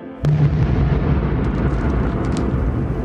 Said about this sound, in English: Huh. Sounds like thunder.